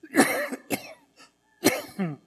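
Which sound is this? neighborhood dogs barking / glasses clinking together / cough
cough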